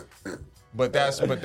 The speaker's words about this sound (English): And that was a perfect burp.